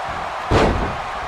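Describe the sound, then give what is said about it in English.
A single heavy slam of a wrestler's body hitting the ring canvas after a clothesline, sharp, rising briefly above a steady background hiss before fading. “Savage back to his feet. And has him in another one of those clotheslines.”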